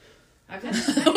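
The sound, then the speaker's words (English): Heavy, deep breathing: after a moment of near silence, a loud, rough breathy rush starts and builds, with a slight voiced, almost chuckling edge. “Wow, that was some heavy breathing right there.”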